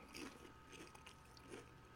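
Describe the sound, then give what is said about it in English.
Someone chews crunchy, sweet food, producing a handful of crisp, irregular crunches over a low background hum, fairly quiet and with no talking. “It is very crunchy. It is good. It's sweet.”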